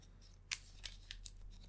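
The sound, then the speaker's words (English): Playing cards being shuffled back into a deck during a card game, a handful of quiet, crisp papery flicks and snaps spaced irregularly over a low steady hum, with no one speaking. “I think I take the pickpocketing. Shuffle those back in.”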